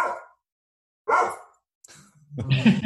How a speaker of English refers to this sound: You got a woof of approval from my dog.